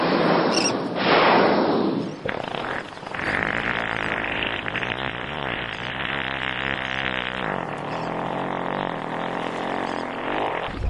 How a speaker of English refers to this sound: With luck, we're about to hear one. Will we be able to smell it, too? The farts of the humpback whale do not smell. Oh, hark!